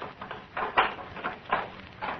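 A door is opened with a series of uneven creaks and wooden clunks, five or six short bursts spread over about two seconds, moderately loud, with no voices.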